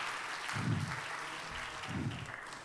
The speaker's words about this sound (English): Let's clap our hands to the Lord one more time, would you? Hallelujah. Hallelujah.